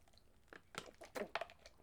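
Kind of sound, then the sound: food or drink, sipping water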